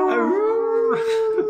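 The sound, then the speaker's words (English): A person's voice mimics a hound dog's howl, one sustained, wavering tone held for over a second with a brief rise and break near the end, loud, with no talking. “Like, I'm a hound dog.”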